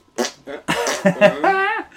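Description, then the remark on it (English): A slap fart sound effect plays several times in quick succession, short squelchy bursts ending in a longer rubbery squeal, loud with no talking. “Well spent for what a slap fart.”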